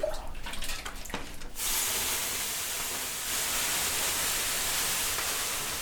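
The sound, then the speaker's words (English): A sauna master at the front pours water over the sauna's two hot ovens to create more steam: a few brief spatters, then a loud, steady hiss of steam fills the space and holds for several seconds. “And the so-called goose master at the front keeps pouring water over the sauna's 2 ovens to create even more steam.”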